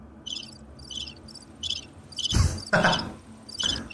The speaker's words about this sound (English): Those are crickets, people. I have crickets in a jar making sound effects.